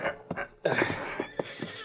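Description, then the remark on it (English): A horse, Silver, whinnies: a shrill, wavering neigh that rises suddenly after a few soft snorts and trails off in shaky pulses over about a second. “Got a couple of horses waiting for you.”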